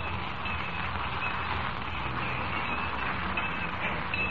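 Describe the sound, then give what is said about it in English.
A train sits at a station in Hawthorne, due to carry a gold shipment to Metropolis, giving off a steady, continuous hiss and rumble that holds at an even level throughout, with no voices over it. “Jimmy Olsen in Hawthorne boards the train which is to carry the $2 million gold shipment to Metropolis”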